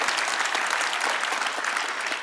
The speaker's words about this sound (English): Come on, somebody give the Lord a clap offering today. Hallelujah.